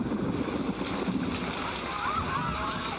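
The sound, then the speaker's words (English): Heavy rain pours down in a steady, dense hiss with splashing water, loud, continuing without a break for the whole stretch. “It started to pour.”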